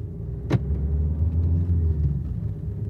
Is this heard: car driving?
yes